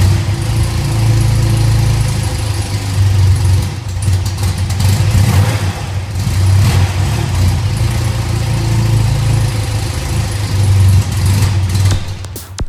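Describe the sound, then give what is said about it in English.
The air-cooled 247 boxer twin engine of a BMW R80 G/S motorcycle rumbles with a deep, steady throb, pulling into a couple of brief revs before settling back to a loud, even idle. No voices. “Recognized the world over as the first large displacement multi-discipline motorcycle on the market, the R80 G/S was powered by BMW's 247 Boxer Twin, affectionately known as an airhead due to its use of air cooling”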